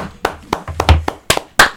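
A few sharp hand claps ring out at an uneven pace, five or six crisp slaps with short gaps, over a low murmuring rumble and no clear speech.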